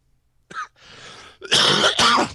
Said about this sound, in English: Ew, I just coughed up some disgusting stuff. Gross. I'm recovering from a cold.